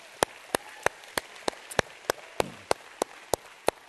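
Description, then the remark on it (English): At a church service, hands clap for God in a steady, even beat, about a dozen sharp, crisp claps spaced evenly over a low, hissy background, with no voices. “Let's give God a hand clap tonight.”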